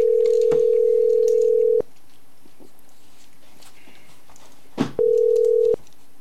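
A steady telephone tone hums for almost two seconds, goes quiet with a soft click, then sounds again more briefly, like a call ringing through on the line while calling a number back. No one speaks.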